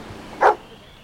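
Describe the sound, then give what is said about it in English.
A single sharp bark from a cadaver dog brought in to aid a search rings out midway, short, over a quiet, faintly noisy background with no talking. “So they brought in the cadaver dogs to aid in the search.”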